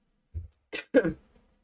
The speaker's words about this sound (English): Sorry, my cough. It's gonna happen a little bit in this episode, but I'm gonna try my best not to.